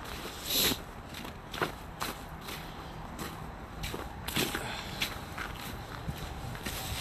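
Steady footsteps of a person walking to a car over a pedestrian bridge by I-94, each step a sharp tap in an even rhythm over a constant low rumble of I-94 traffic coming up from beyond the sound wall, with one brighter hiss near the start.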